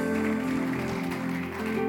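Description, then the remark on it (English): An audience claps steadily to celebrate God, a dense, continuous wash of applause, with a sustained keyboard-like tone humming underneath throughout. “Celebrate God with a good clap as I wrap up in 3 minutes.”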